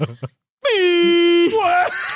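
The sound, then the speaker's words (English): A brief burst of speech, then a person imitates an air horn with a loud, steady, buzzy blast lasting about a second, followed by a shorter, wavering honk. “You also did the gesture of like putting your finger on an air horn.”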